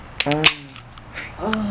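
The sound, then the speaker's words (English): A beer can cracks open with two sharp metallic snaps in quick succession and a short fizzy hiss, while a voice hums or murmurs briefly around them. “For my ASMR listeners, hopefully this cracks good right here.”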